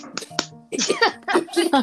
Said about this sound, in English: It was just me tapping on my leg, on my pants. So that's all it was.